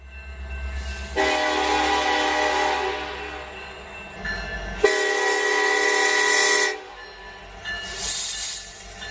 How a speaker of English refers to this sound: Train wreck.